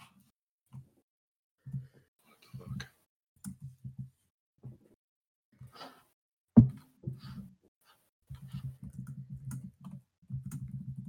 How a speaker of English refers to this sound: vigorously typing in the background.